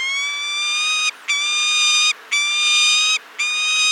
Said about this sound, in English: And if you have really keen ears, you might be able to detect them. Here's a recording of a peregrine falcon, just in case.